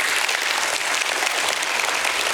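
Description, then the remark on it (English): A crowd applauds steadily, giving God a hand clap, a dense wash of many hands clapping at once with an even, sustained loudness and no voices on top. “go ahead, give God a hand clap.”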